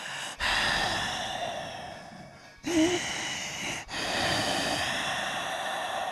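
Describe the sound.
A voice imitates the heavy, labored breathing of a woman giving a back massage: three long, loud, raspy breaths drawn in and pushed out, each separated by a brief pause, with no talking.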